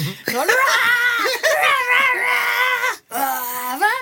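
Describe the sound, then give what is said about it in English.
A voice imitates loud, strained yelling while pooing on the toilet: long wavering groans and cries that rise and fall, with one brief breath-like break near the end. “My perfect toilet music would be some like heavy metal or something so that I could like yell while I'm pooing.”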